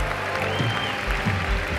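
A crowd claps steadily at a preacher's call after a salvation prayer, a dense wash of many hands hitting together at a loud, constant level, with a low rumble of voices and movement underneath.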